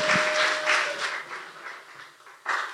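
Church audience applause for a person invited up to the front: a dense wash of many hands clapping that gradually thins and softens before swelling briefly again near the end. No one speaks over it.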